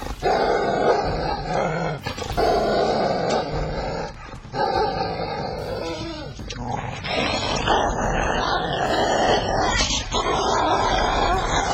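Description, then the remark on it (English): The speaker's dog Snookums growls loudly, a rough, sustained snarl that carries on for several seconds with only a few brief breaks, no talking over it. “By the way, my dog Snookums is sitting right by my side and is very excited about listening to this show.”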